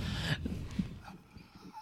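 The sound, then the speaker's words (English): A dog being walked by an elderly couple gives a few short, startled yips and whimpers as a car makes a violent U-turn in the middle of the street, over a burst of rumbling street noise, moderately loud, then fades into quieter background sound. “pulls a very violent U-turn in the middle of the street, scaring an old couple who are walking their dog.”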